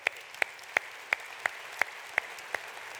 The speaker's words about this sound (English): you want to give them a round of applause?